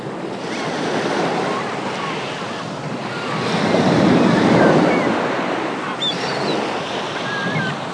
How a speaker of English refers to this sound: With a fantasy travel, auto-suggestion, sound of the sea, and relaxation music.